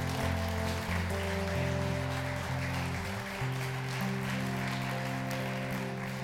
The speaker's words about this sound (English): Let's give the baptize a round of applause.